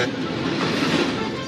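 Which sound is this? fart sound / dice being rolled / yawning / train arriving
train arriving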